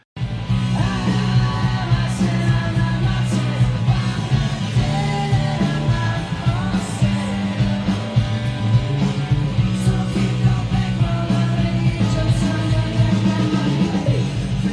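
A rock song plays loud and dense throughout, with thick layered guitars, a driving full-band rhythm and a melodic vocal line riding on top, holding steady volume from start to finish.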